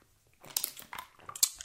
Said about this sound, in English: But here's a nice, refreshing sip of water.